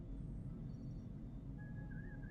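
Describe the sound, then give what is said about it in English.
A steady, low ambient hum of a starship bridge drones throughout, with faint high electronic tones and a thin warbling beep of chirping sensors rising near the end. No one speaks. “And then you hear the gentle chirping of sensors and the low ambient hum of your bridge.”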